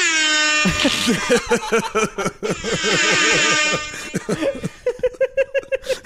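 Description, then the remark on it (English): A loud air horn sound effect played from a phone app blares in long sustained blasts broken up by rapid, stuttering repeated honks, alone with no talking. “I got the Instarap air horn, baby.”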